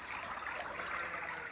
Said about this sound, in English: And if you follow that path with me, it'll lead you to a hazel copse whose leaves and catkins hang like drowsy bats, and through which runs a winding brook. The waters ripple, cool in the festering heat.